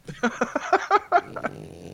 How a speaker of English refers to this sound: French bulldog, noisy, grunty man. Sounds like a walker off The Walking Dead.